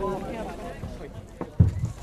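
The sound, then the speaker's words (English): A couple of heavy, dull thuds as the horse Bob Dillon kicks against a wooden wall in the stall next door at the Omi Races, the loudest one sharp and booming, following a stretch of muffled talking in the background. “So who's Alan kicking next door?”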